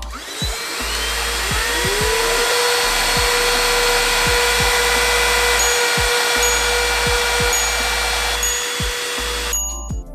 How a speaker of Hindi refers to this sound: सभी vacuum cleaners की noise around 80 to 85 decibels की थी